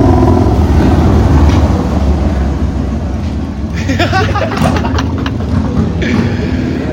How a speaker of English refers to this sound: I'll just quickly mention we are recording this in my garage, so cars will drive by.